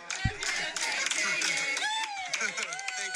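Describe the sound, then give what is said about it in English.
Hand clapping rings out in quick, sharp claps during a birthday sing-along, blending with several voices talking or singing over it, the clapping meant to pick up the song's pace. The clapping keeps up a busy, fairly steady beat for the whole stretch. “I try and get the clap thing going along.”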